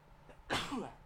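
A single sharp sneeze caused by allergies bursts out, sudden and loud, then trails off with a breathy rasp against a quiet background.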